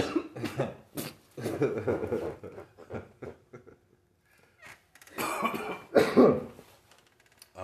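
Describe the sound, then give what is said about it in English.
Repeated harsh coughing fits from people smoking come in bursts, with a brief quieter pause midway before another heavy, raspy round of coughs and throat clearing. “There's a lot of coughing going on in this episode, but that is because we are smoking some gas, and I apologize.”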